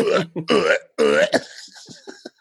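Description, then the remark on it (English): Several loud belches follow one another in quick succession, each a rough, drawn-out burp, ending in a few shorter, crackly gulps, performed as the chorus of a cover song. “The chorus is just them belching.”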